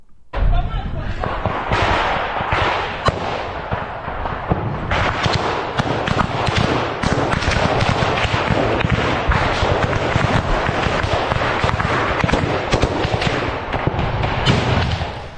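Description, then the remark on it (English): Loud, dense gunfire in real war footage filmed by a Russian soldier, crackling almost nonstop, sharp cracks and booming thuds piling over each other in rapid irregular bursts, with indistinct voices buried in the din. “Before I keep playing it, I got to just talk about this because you're seeing these gunfire.”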